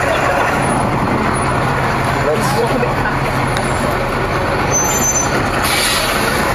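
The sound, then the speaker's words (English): A large city bus idles in the rain with a steady engine rumble, brief hisses of air brakes rising over the din, while people chat. “Feel free to open your doors anytime soon, it's raining.”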